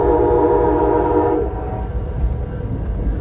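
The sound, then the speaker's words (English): A passenger train running along the coastline rolls along the tracks with a loud, steady low rumble, its horn sounding for the first second and a half before only the continuous rolling noise remains. “That built environment threatened by rising seas includes oceanfront homes, roads, piers, power plants, and this very train I'm riding on.”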